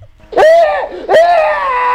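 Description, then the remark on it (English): A voice imitates people screaming in a hospital psych unit: two loud, high-pitched wailing screams, the first cutting off briefly before the second rises and holds, intense, with no other sounds around them. “You, like, got near the doors, and you would hear people screaming.”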